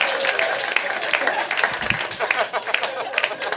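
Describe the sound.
An audience claps steadily after a joke by comedian Kyle Kinane, a dense crackle of many hands with brief cheers or voices mixed in, fairly loud and sustained throughout.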